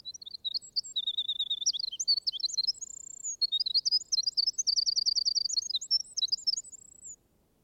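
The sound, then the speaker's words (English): A songbird sitting on a log sings a lively, continuous song of high, clear notes, with rapid trills, repeated chirps and sustained whistles in quick succession, with no voices. “And, as it were, clear his throat, but sits there on a log and pours out his music.”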